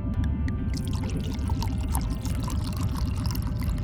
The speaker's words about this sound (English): Pour me more wine from one of my bottles. Of course.